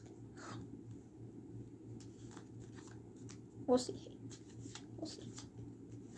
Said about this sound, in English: Okay. Shuffle the deck.